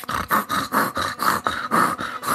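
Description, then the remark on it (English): A mud-covered pig snorting and grunting in a quick, steady series of about ten rough, breathy bursts, fairly loud and with no talking over it. “And this pig rolled a bookishness roll to see if it would be smart enough to not be tempted by these nuts, and it failed.”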